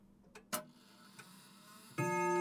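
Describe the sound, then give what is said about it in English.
A few sharp, uneven clock ticks sound, then a sustained ringing tone swells in and holds at the end. “The quarter was so long that he was more than once convinced he must have sunk into a doze unconsciously and missed the clock.”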